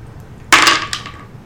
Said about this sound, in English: Now roll me a d20. I have one of those out.